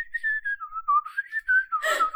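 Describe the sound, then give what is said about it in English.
A person whistles a short, wavering tune in place of a bird call, the pitch sliding down and back up in a few connected notes before ending in a breathy, airy burst. “I wish I knew a bird call. I can't. I could whistle a little bit.”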